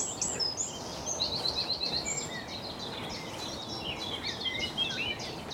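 A chorus of songbirds, with warbling and repeated bright chirps and trills, blackbird, chiffchaff, blackcap and wren, layered over a steady outdoor background hiss.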